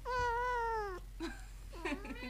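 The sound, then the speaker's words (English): A cat named Daphne gives a long, drawn-out meow lasting about a second, followed by a couple of shorter, chirpy mews, clear against a quiet background with a low hum. “Meow. Oh, there's Daphne.”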